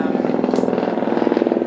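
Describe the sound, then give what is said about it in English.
A helicopter flying overhead in Hollywood drones steadily, its low engine hum carrying a fast, rhythmic chopping pulse from the rotor that holds at a fairly loud, even level throughout. “Plane. Sorry. Helicopter. Jesus. I live in Hollywood, guys. Sorry. Helicopters everywhere.”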